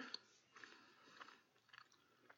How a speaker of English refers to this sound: Any guesses? As we sit here chewing?